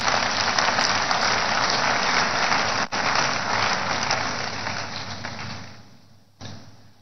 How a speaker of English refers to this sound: Give the Lord a big hand of prayer.